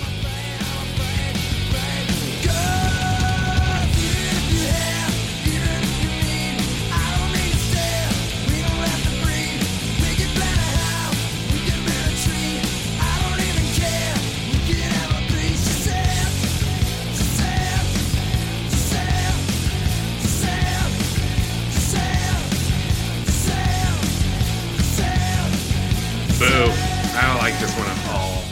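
A loud, distorted grunge rock song plays throughout, a dense, steady wall of heavily overdriven guitars and pounding drums that barely lets up.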